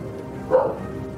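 A single dog bark rings out midway through from a house in Seattle where nobody seems to be home, short and moderately loud, set against a steady low background hum with no one speaking.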